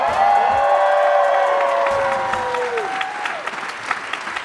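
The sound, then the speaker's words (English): A live audience at the Reva and David Logan Center in Chicago claps steadily and loudly while several people whoop and cheer with rising, drawn-out shouts; the cheering fades toward the end and scattered applause carries on. “Hey, y'all. Please clap.”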